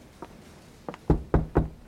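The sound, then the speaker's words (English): Five knocks on an office door, starting soft and hesitant, then three firm, evenly spaced raps. Fairly loud, with no voices. “Knock, knock.”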